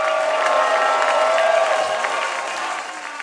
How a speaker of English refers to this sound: Clap your hands and give him some praise.